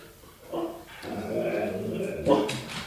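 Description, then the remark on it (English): A dog whimpers and barks at a door in a few drawn-out, whiny bursts, with a sharper yelp near the end, fairly loud against a quiet background. “Barking at every door possible.”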